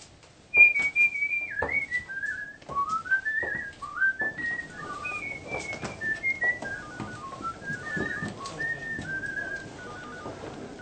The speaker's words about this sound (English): On the way to the office, he whistles a tune. Listen to this scene. Do you know this melody? Perhaps you already know who composed it.